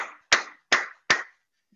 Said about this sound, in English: Why don't you clap for Jesus as we take a seat?